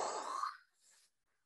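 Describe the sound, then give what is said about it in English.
A voice imitates a jet plane from the film Top Gun: Maverick roaring past: a loud, breathy whoosh that sweeps down in pitch and fades over about a second, followed by a softer hissing tail. “Here's the plane going by.”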